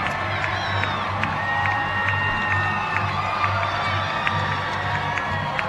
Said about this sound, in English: As the crowd is fired up, they've got the Jumbotron going on as they're firing up for the Sentinel girls.